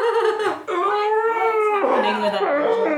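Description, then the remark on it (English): A person screams into a jumper in frustration: a muffled, strained scream drawn out over several seconds, loud and voiced, its pitch wavering and sliding down in a couple of long, moan-like swells with no other sound. “Sorry, that was my screaming into my jumper in frustration.”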